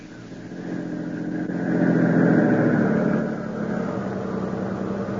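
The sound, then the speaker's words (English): A car engine hums steadily as the vehicle drives along a rough road at night, swelling louder for a moment midway before settling back to a constant rumble. No voices are heard. “I'll do something to him in the car before we even arrive at the plant.”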